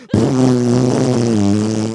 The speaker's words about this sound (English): I uncontrollably fart, and I don't find that funny. That is not funny.